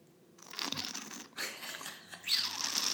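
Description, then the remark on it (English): Someone makes a wine-tasting slurp, drawing air noisily through the lips in three hissy, bubbly pulls over about three seconds, each fairly loud and wet-sounding, with no talking. “Oh, do you want me to do the sipping sound?”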